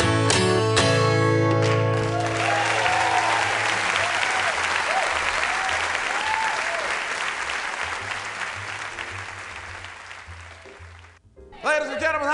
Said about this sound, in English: Round of applause to welcome the world's greatest blues singer, the king of the blues,